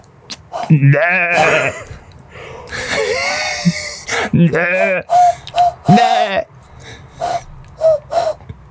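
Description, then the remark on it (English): A person imitates a goat, letting out a couple of quavering, wobbly bleats, mixed with breathy, hissing vocal noises and short bursts of sound in between. “I can do a Hang goat.”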